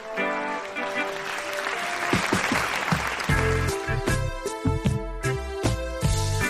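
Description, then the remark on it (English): A round of applause for the host of One of One, a steady wash of clapping from a crowd, layered over loud upbeat music with punchy beats that carries on throughout. “Now, please give a warm round of applause for your host,”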